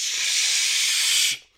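A steady, bright hiss of an adhesive spray going across a kneecap runs unbroken for just over a second at even loudness, then cuts off abruptly, leaving near silence.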